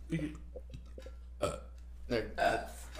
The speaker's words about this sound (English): Oh yeah, I could burp like a man. I think everyone could do that.